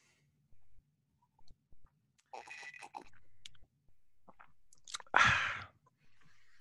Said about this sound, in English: What are you eating? It looks delicious. Ice. Oh, not that delicious.